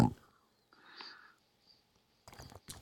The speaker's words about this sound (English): that was me taking a gulp of water.